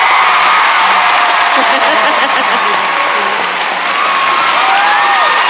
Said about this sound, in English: But as you can see, as the favorites clump by, the crowd roars and their approval. I'm not sure how much effect that has on the judge's decision, but we'll see. You will hear a very loud yell in 1 second. Yep.